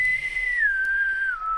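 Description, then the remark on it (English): A person whistles a long, steady note that glides slowly downward in pitch, clear, with a slightly eerie feel and no talking. “Or the whistling, like, puts the story in your head.”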